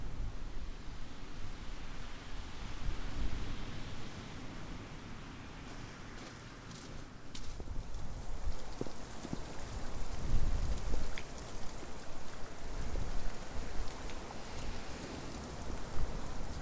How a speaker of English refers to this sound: I'm still in Budley Salterton, and I've just walked through a thunderstorm. It's still chucking it down, so I found some shelter.